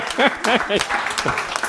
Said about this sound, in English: Round of applause